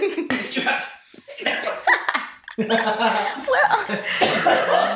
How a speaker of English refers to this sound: It burns. That was a feisty cough. Oh my gosh! Yeah, I'm so sorry.